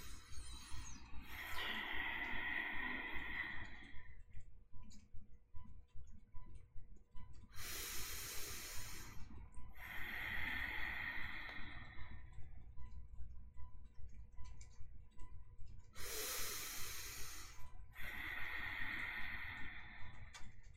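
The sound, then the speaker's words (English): Slow, exaggerated breathing demonstrating a breathing exercise: several long breathy inhales and forceful exhales in a steady cycle, separated by quiet pauses where the breath is held. “So are we supposed to hold our breath, exhale, and then hold our breath?”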